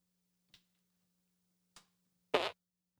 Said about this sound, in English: What was it? It was a fart. It was a tiny boy. Yeah, I could hear it. That one is called, in my sound pad, that's called fart parentheses little boy.